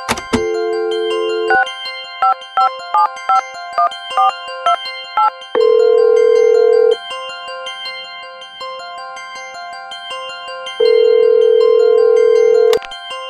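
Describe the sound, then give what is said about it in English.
A steady phone dial tone gives way to a quick run of about nine keypad beeps as someone phones a friend, followed by two long, loud ringback tones separated by a pause, with no one speaking. “We're going to phone a friend.”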